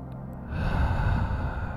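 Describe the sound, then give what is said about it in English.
A soft inhale through the nose or mouth during a one-minute relaxation breathing exercise. It begins after a brief quiet moment and holds as a steady, breathy rush for over a second, with no talking. “Good soft breathing in.”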